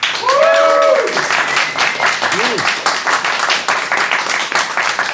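An audience applauds steadily for about five seconds as a vote in a contest, a dense crackle of clapping hands, with a couple of rising and falling whoops and cheers ringing out early on.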